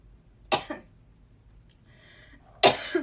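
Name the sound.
coughing and throat clearing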